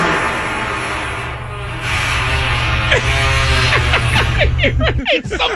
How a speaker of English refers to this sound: Sounded like a squeaky door, right? It does. Like an old, like, right. Big squeaky door. So this is somebody slowly opening an old, like, wooden door. Taking a peek.